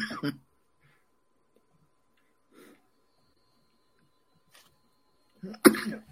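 A close, harsh cough opens, followed by long quiet stretches broken by faint throat-clearing noises, then another loud, sharp cough near the end.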